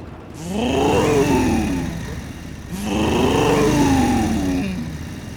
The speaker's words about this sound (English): For example, this is your standard motorcycle exhaust. And this is a Thunder Pipes exhaust system.